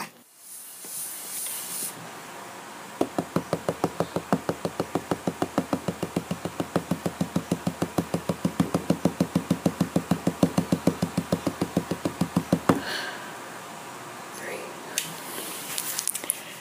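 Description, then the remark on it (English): Rapid, steady knocking on a hard surface as a nightly ritual at 8:26 p.m., dozens of evenly spaced raps continuing for about ten seconds before stopping abruptly, with a soft hiss in the background before and after. “It is 8:26 p.m., and that was the first of many knocking rituals I have at night.”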